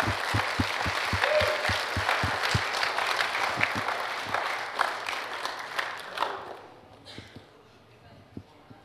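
A room full of people applauds for about six seconds, dense and steady with a few rhythmic thumps underneath, then it quickly fades to quiet with scattered murmurs.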